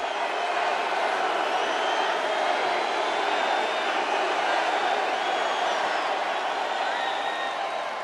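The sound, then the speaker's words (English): A large crowd roars in a steady, unbroken wall of applause and cheering, with shrill whistles and whoops rising above it throughout; no one speaks. The crowd is applauding Donald Trump at his rally. “The applause goes on and on.”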